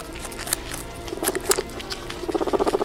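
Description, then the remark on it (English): Guinea pigs munching lettuce at the start of a song: irregular crisp crunches and nibbling clicks, then a rapid, rhythmic run of soft squeaky chirps toward the end. No voices. “The song starts with our guinea pigs eating lettuce.”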